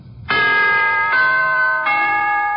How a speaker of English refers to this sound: To put it in musical form, here is a holiday wish from the NBC Chimes.